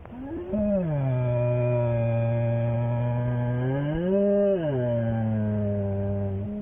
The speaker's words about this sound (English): This haunting sound is being made by a black bear. Some people have described it as a growl. Because if a person is afraid of an animal, any sound they make will be interpreted as a growl. But it's just their moan of fear.